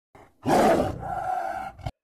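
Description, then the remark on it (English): A single tiger roar lasting about a second and a half, opening with a harsh, breathy blast and trailing into a steadier, strained growl before stopping abruptly. “And now compare it with a tiger's roar.”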